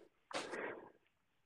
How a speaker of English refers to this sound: My dog's destroying something.